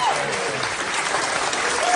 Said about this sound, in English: That's people applauding, right? Uh-huh. Those are Australians at baggage claim as American firefighters arrive in Australia.